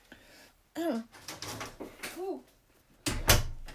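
A door is pushed shut, with a couple of short creaking groans as it swings, then a firm, solid thud as it closes.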